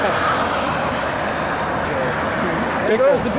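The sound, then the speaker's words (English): A BJ's truck rumbles past on a street, its loud, steady roar of engine and tire noise filling the whole moment and swelling slightly toward the end. “There goes the BJ truck.”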